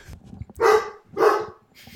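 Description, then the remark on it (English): A dog barks twice in quick succession, loud, with the start of a third bark cut off at the end over a low background rumble. “We have a dog barking in the background.”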